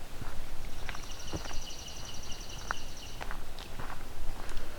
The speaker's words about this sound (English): Coming up on another pine warbler.